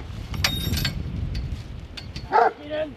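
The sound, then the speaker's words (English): Farm working dogs, a 5-year-old Huntaway named George and an 11-month-old heading pup named Ro, bark briefly outdoors in a paddock near the farmyard. One sharp bark stands out near the end over a steady low rumble of open-air background noise. “are in a paddock near the farmyard with their dogs.”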